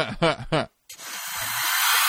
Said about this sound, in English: Hiss.